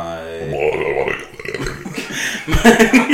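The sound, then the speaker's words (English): A voice imitates a long, rumbling burp, loud, its croaky tone wobbling for a few seconds before ending in a louder, choppy burst. “It was my burp impression.”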